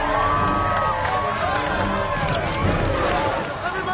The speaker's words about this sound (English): Now, can we get a big cheer for diversity?